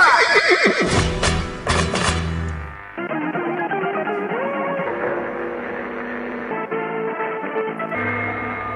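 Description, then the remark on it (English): A horse whinnies loudly at the start, with a few clopping hoof beats mixed in, then a steady tonal backing continues for several seconds with no one speaking. “I'm on a horse.”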